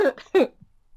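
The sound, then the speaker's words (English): Two sharp coughs in quick succession, the second a bit louder, with a throaty rasp and a faint low throat sound trailing off before silence. “Sorry about my coughing.”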